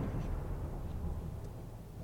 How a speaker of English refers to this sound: That's thunder.